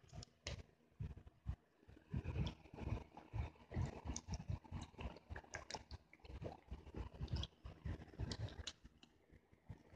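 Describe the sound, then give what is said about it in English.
Someone drinking water, with a steady run of irregular gulps, swallows and soft clicks over about ten seconds, fairly loud and with no talking. “Let me drink a little bit of water.”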